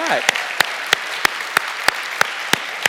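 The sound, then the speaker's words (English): An audience applauds in a steady, dense wash of clapping, with one sharp clap cutting through in an even rhythm about three times a second. A brief voice rises at the very start. “All right, let's get in a round of applause.”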